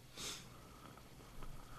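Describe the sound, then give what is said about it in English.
A faint snore from a caller who has fallen asleep comes through a call-in show's phone line: one short, breathy, hissing intake of air, then a thin, steady line hum and soft crackle with no talking. “I think she's falling asleep. I can hear her some snoring.”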